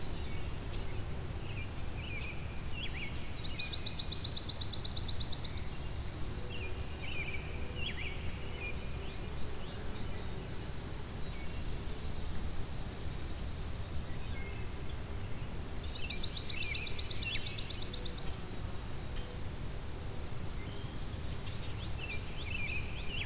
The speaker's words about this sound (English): Can be similar to chipping sparrow. It's a lot harsher than pine warbler. Being a swamp sparrow, you tend to find it near swamps, open marshland as well.